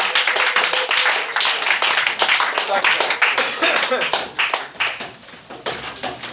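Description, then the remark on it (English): An audience applauds steadily at the end of a performer's set, many hands clapping in a dense, crackling wash that stays loud throughout and eases slightly toward the end. “Set up some claps”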